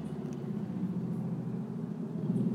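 A steady, low engine rumble from several motorcycles holds at an even loudness for a few seconds, swelling slightly at the end, with no one talking.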